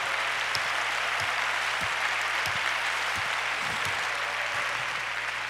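A crowd applauds steadily, including people in the mezzanine, a dense, continuous wash of many hands clapping at an even loudness, with a few sharper individual claps poking through, and no one speaking.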